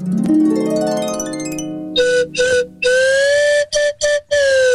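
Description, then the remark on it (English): A slide whistle plays alone, sweeping upward in a long rising glide, then tooting a series of choppy, bright notes with slight bends, loud. “Please fire off a MILF, call for her, and send out a karma shot for her entire family with the slide whistle solo at the end.”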